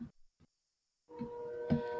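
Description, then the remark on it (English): A train passing by a house, not very close to it: after a couple of soft thumps and a second of quiet, a loud rumbling roar swells in, carrying steady droning tones that hold to the end. “It's not very close to my house, but this is the loudest motherfucking train I've heard in weeks.”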